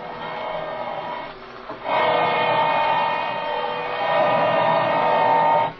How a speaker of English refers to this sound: This drill's getting awful hot.